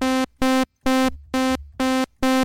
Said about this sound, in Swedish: Två toner i taget är på varsin synt nu. CS5.